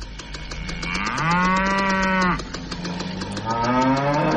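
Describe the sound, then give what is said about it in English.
A cow fart machine sound effect: two loud, drawn-out mooing bellows, the first swelling and holding steady, the second rising at the end, over a rapid buzzing pulse. No one speaks. “For some reason, I have this cow fart machine here.”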